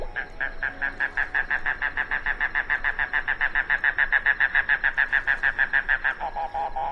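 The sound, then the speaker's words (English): A mangrove cuckoo (Coccyzus minor) calls alone: a long, steady run of some thirty quick, guttural notes, then a few lower, slower notes at the end. “It made it today's featured feathered friend, Coccyzus minor, the mangrove cuckoo.”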